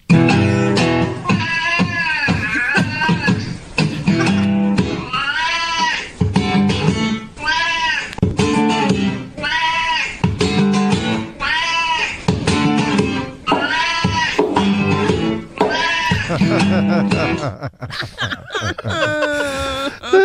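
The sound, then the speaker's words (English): A cat yowls in long, wavering cries over steady blues music, its loud, drawn-out wails rising and falling almost continuously as if singing along with the tune. “Have you ever hear a cat who has the blues,”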